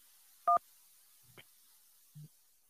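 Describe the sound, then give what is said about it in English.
A short burst of phone-line tones as a caller is put through: one sharp two-pitch dial beep, then a faint upward blip and a low buzzy tone as the call connects, with quiet gaps between and no talking. “Let's jump back to the phone lines here.”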